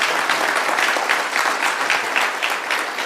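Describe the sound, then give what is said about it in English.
A crowd applauds steadily to congratulate a family on 10 years, many hands clapping in a dense, even wash of sound that stays loud and sustained throughout, with no voices standing out. “And clap for that.”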